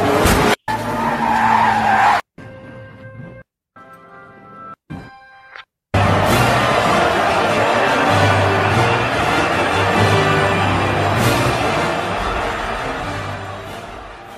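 A NASCAR racing scene from a movie: loud tires screech and skid amid roaring engines, broken by brief gaps and short tonal bursts, then a long sustained stretch of race cars squealing and rumbling.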